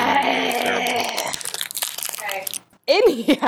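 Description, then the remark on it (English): A chocolate bar wrapper being unwrapped, crinkly rustling in a burst of sharp crackles and crunches, with people talking before and after. “Well, don't unwrap it in the microphone.”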